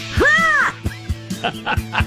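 A squeezed bald eagle toy called Squawky the Bald Eagle lets out a loud, rising-and-falling squawk, followed by several shorter squeaky bursts and soft thumps in an uneven rhythm. It is sounded with a little squeeze and tuck behind its tail feather.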